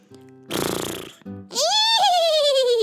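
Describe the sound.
A child's voice imitates a horse: first a rough, breathy snort lasting under a second, then a loud, high whinny that rises, wavers and slowly slides downward in pitch.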